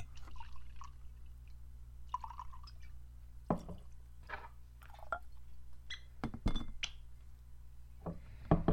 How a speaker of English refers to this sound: That said, let us pour this stuff.